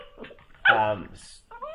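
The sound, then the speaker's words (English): A puppy whines and lets out a sharp, loud yelp, followed by a short pause and then another brief high-pitched whimper. “because we can have 5 minutes without the puppy making a noise.”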